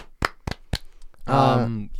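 Three sharp hand claps in a quick, even rhythm, followed by a loud, drawn-out vocal cheer, celebrating a win in a fantasy game.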